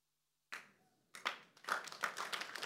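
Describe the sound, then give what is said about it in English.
A lone sharp clap rings out, then after a brief pause an audience breaks into dense, loud applause that quickly builds and carries on steadily, with no talking over it. “And don't clap.”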